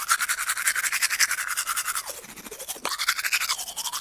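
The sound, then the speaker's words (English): Steady scrubbing of a manual toothbrush on teeth: quick back-and-forth strokes in a fast rhythm, with a brief wetter pause midway before brushing resumes. No talking. “but the just the brushing noise going out, like brushing the teeth, just some reason just gets him.”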